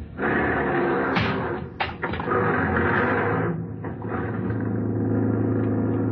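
A couple of sharp thumps like a taxi door slamming shut, followed by a steady, loud engine rumble as the taxi drives off, with no one speaking.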